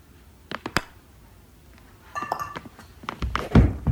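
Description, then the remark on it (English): A few sharp taps give way to a bright ringing clink as a golf ball is putted into a glass in a living room, followed by a couple of heavier thunks and rattles toward the end. “He puts it to a glass in his living room.”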